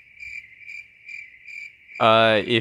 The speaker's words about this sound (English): Insert cricket soundbite.